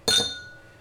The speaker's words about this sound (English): Here we go. I'm going to clink it on another glass in the kitchen.